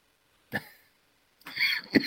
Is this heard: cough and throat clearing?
yes